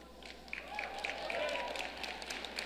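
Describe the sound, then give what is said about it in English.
Thin, scattered applause from an audience, a sparse patter of claps over a low crowd murmur that stays fairly quiet and never builds into a full ovation. “That was a shitty ass clap.”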